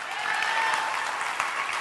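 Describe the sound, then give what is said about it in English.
A church audience claps steadily, a dense, even wash of many hands with no gaps, holding a constant loud level and a faint tonal ring underneath. “Clap for the church.”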